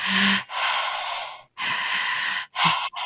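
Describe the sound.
A person loudly imitates a man's heavy mouth breathing: several harsh, airy inhales and exhales in a steady rhythm, with no speech.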